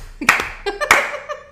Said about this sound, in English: Like, can you slow clap? Yeah.